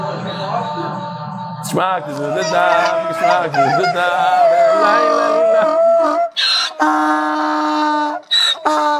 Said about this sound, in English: That's a shofar, you hear that? That's not me.